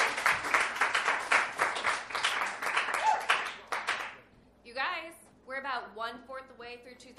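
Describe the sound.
A dense burst of audience applause for a performer being introduced on stage, steady and loud for about four seconds, fades out, and then a person begins speaking.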